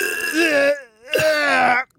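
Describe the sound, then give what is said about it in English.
A man imitates a koala's coughing grunt with two loud, rasping, throaty groans separated by a brief pause, like a burp-like bellow. “Make a noise like they're a cigarette smoker, like coughing up a lung.”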